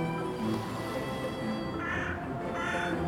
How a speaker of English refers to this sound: The crow followed behind with a befuddled screech.